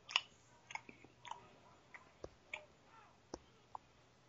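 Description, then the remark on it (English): Someone imitates Ivan Drago chewing his food with their mouth: a quiet series of wet smacks and clicks in an irregular rhythm, about a dozen over four seconds, with no talking. “Like, just chewing his food.”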